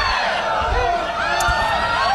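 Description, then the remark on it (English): A mixed crowd reaction sound effect uploaded to freesounds.org: a dense crowd reacts all at once, a jumble of overlapping cheers, shouts and whoops blending into a loud, continuous roar for a couple of seconds, with no single voice standing out. “They upload things like mixed crowd reactions.”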